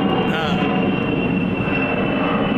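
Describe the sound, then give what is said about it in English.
A large AWACS aircraft roars low overhead, flying into SIU for a flyby over the football games, a loud, steady rumble with a thin whining tone running through it for the whole stretch. “That's a big fucking plane. It's flying into SIU.”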